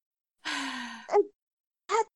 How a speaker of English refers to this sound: He doesn't moan when he comes back. He's out of breath and panting. Like, okay, still he's out of breath. He moans when he leaves.